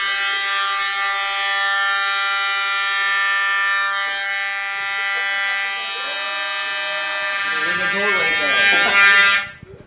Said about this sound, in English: False alarm? Yeah. It happens all the time in the school.